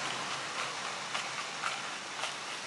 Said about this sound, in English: Anyway, so it's raining pretty hard. That's why I'm speaking pretty loud. I'm pretty sure you can hear me. My voice is overlapping the rain, hopefully.